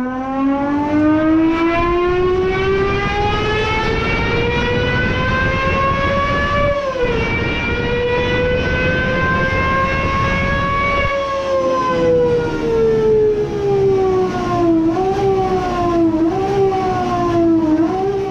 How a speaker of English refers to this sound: a naturally aspirated 3.9-liter V12 with a 12,000 RPM redline and a six-speed manual gearbox